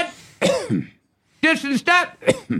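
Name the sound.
cough or throat clearing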